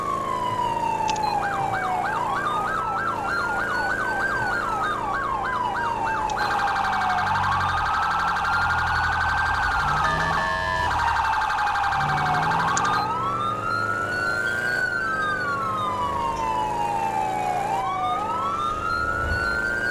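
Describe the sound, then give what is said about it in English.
A fire engine siren blares as the engine drives at speed on a highway to a brush fire, switching between rapid yelping bursts and long rising-and-falling wails, with a short horn blast midway and a low engine rumble underneath. “Well, we're on the highway now, so know what time it is. It's hot speed time.”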